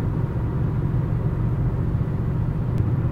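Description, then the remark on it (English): Steady low road rumble from inside a moving car on Interstate 5 (I-5) at about 2 a.m., a constant droning hum of tires and engine filling the whole stretch with no voices. “just passed another white Kia Rio on the road here on I-5.”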